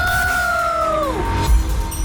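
A single sustained high-pitched scream holds steady, then slides downward and cuts off, over a low rumbling background with a brief thump near the end.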